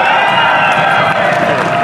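A loud, steady wash of audience applause and cheering for a panelist being introduced, dense clapping blended with shouts and whoops, sustained without a break for a couple of seconds.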